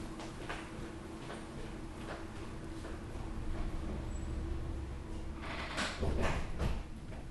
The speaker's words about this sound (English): Just a sec. I'm going to go close that door real quick.